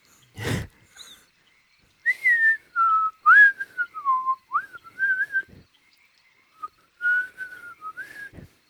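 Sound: person whistling a song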